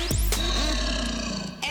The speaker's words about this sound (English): I like how there's the, like a tiger like in it. Here it comes.